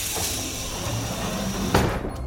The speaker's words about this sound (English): Closing airlock chamber.